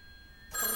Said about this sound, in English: Somebody want to answer the old-timey telephone?